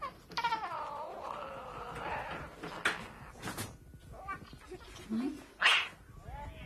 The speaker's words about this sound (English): What's that noise? The motherfucking cat has gotten me every goddamn time.